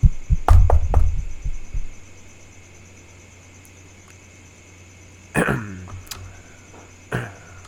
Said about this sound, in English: So, how are we doing this? Okay, so, 1, 2, 3, knock. Gotcha. Okay then, on the count of three.